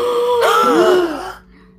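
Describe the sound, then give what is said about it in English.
Several voices at once make strained, strangled groaning noises, like people choking and unable to breathe, rising and wavering together for about a second and a half before cutting off. “It just sounds like we can't breathe, you guys. It's not like gasping, really. We sound like we're dying.”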